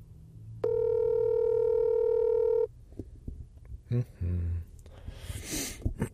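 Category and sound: signal or alarm, phone ringing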